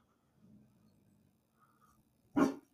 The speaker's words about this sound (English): The dog has successfully protected us from the church people delivering a flyer.